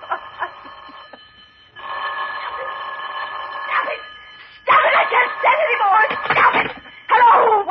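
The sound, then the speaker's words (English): An old-fashioned telephone bell rings in repeated bursts, fairly loud, with a brief pause between rings, before a voice-like stretch of busier, agitated sound. “Oh, let it ring. Go on, ring. Trick of some kind. I won't answer it.”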